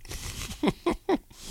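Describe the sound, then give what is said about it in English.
Chewing of Gramps Original beef jerky, a premium cut of meat: three moist, crunchy bites in a steady rhythm, each a short loud burst over a quiet background. “I mean, it's hard to talk with jerky.”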